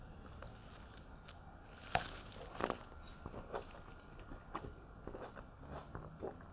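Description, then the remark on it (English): Wet, squishy chewing on a juicy plum, with a sharp bite early on followed by irregular soft smacking and crunching sounds over a low, steady background hum. “I'm going to pop another plum while you make a decision.”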